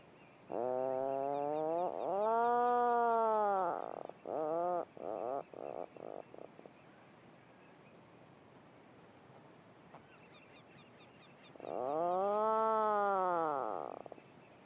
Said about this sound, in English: all this honeycomb effect of birds calling and answering to each other from below the surface and within their burrows with this lovely, deep, rolling motorbike droning sound, which again they call and listen for a reply from their neighbour.